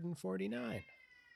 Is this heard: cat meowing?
yes